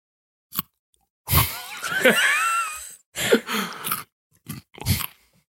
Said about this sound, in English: Next, I invite you to take a bite of the food.